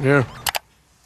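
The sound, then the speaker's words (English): A cat in a cat video gives one short, loud meow, and two quick, sharp clicks follow a moment later before the sound drops to near silence. “Let's watch cat videos.”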